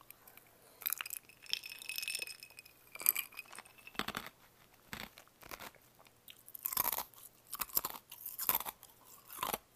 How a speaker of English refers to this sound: Like, for example, chewing ice.